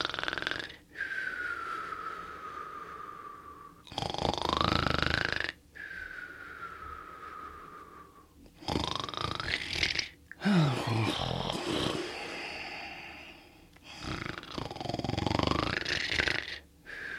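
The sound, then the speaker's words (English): People mimic loud snoring: a series of rough, rattling snores alternating with long, whistling, wheezy inhales that glide down in pitch, repeated for several cycles with no talking. “You're listening to the Echo Show podcast, where we're actually snoring.”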